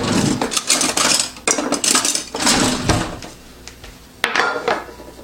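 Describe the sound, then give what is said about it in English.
A dish with peanuts and bean sprouts being served from a pan onto a plate: a steady run of metal utensil scrapes and clattering clinks against cookware, fairly loud, with a sharp knock near the end and no talking. “I'm just gonna plate it.”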